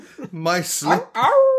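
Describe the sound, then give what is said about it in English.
A human voice imitates a seal's baying: three drawn-out, wavering honks with sliding pitch, the last rising and held, loud, with short breaks between them. “At last, he ejaculates, shuddering and growling, making the noises of a seal, baying at the Arctic moon.”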